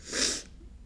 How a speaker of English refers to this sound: I feel like I'm about to sneeze. My dad told me to edit that out, but I'm holding my nose instead.